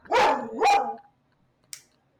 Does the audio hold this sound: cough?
no